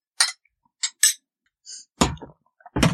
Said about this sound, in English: So, ladies, let's raise our glasses.